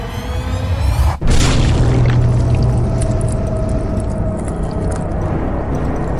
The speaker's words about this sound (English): There's a crunch and a squelch and a splattering of blood as this tiefling vanishes between the palms of this giant.